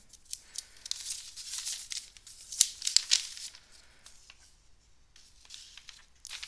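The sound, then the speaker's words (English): A sheet of paper rustles and crinkles in an irregular burst of dry, crisp handling noise, with a few sharper crackles partway through before it settles into quieter shuffling. “Let me get this sheet of paper here.”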